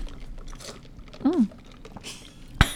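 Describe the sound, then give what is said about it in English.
Ice being crunched for ASMR, ending in one sharp, loud bite after quiet mouth noises and a brief hummed vocal sound. “In case you want to know, here's the ice.”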